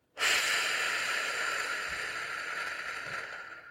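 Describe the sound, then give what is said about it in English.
A single long, steady inhale drawn through the nose for four seconds as part of the 4-7-8 breathing exercise, fairly loud, with a hissy, airy rush that holds for several seconds and tapers slightly toward the end. No talking. “Breathe in for 4 seconds through your nose. Hold your breath for 7 seconds.”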